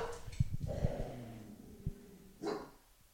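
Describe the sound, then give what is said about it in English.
A dog barks excitedly in a quick burst of short, yappy woofs mixed with snorts and breathy huffs, followed by one more sharp bark and a final whine-like yelp. “Sorry, the dog's got excited.”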